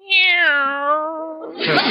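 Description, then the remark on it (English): A cat named Minerva gives a single drawn-out, fairly loud meow, sliding downward in pitch over about a second, then a burst of broad hissy noise at the end. “Meow.”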